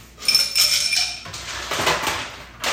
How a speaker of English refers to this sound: you're going to have some noise in the background. putting ice in a glass.